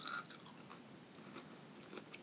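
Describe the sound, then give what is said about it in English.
Crunchy chewing of a cold fish stick, with several crisp bites and crackles spread over a couple of seconds, fairly quiet with no talking. “Ooh, crunchy.”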